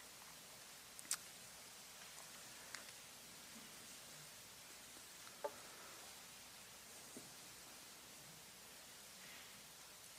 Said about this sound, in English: No, that's not rain. That's Bibles turning. I love that.